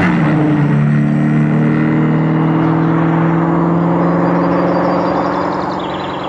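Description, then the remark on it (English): A car engine hums steadily with a low, tonal whir, then gradually fades as the vehicle drives off into the distance. No voices. “Car drives away into the distance.”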